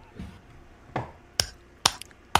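A slow clap: four sharp, crisp hand claps spaced about half a second apart, standing out clearly against a quiet background with no talking.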